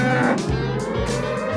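A cow moos loudly, a long low bellow with deep harmonic tones that rise and fall in a couple of drawn-out pulses, no voices present.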